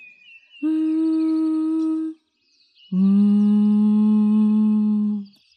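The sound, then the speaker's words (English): Two sustained, steady hums on the exhale, bee-breath style: a shorter one, then a longer, slightly lower-pitched one after a brief pause. Both are loud and even, with no talking. “You're more than welcome to play around with different tones of humming.”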